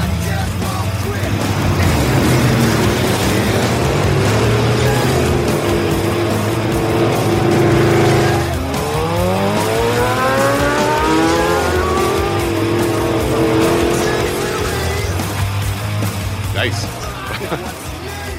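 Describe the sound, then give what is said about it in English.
A big American V8 engine in a classic Detroit-built car from 1959 or earlier rumbles steadily, then revs hard in rising and falling sweeps before settling back to a loud idle, with voices faintly in the background. “V8 American engines. We buy spares, we bring spares from America.”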